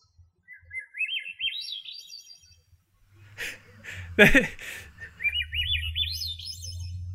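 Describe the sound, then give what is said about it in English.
A strange, high-pitched bird call of rising, stepped whistling notes sounds twice, with a few sharp noisy bursts and a low rumble in between. “But then there's this other one, and it makes the weirdest sound. That sound I just sent to you, and I want to hear what you think it is.”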